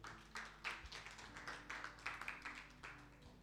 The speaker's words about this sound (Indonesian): Kamu tepuk tangan buat Tuhan.